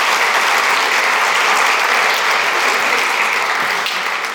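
A crowd applauds steadily and loudly, a dense wash of many hands clapping that holds its level throughout with no talking.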